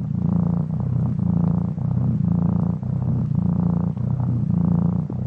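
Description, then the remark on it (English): A mountain lion purrs, a deep, loud, continuous rumble that swells and dips in a steady rhythm of roughly six breathing cycles, with no voices. “Let's hear from my good friend, the mountain lion, purring here a second.”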